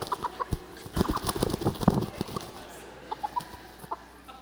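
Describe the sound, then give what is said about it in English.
A chicken clucks in quick, uneven bursts while being held, with some rustling and faint flapping as it squirms, the clucks thinning out toward the end. “So this is one of my wife's chickens.”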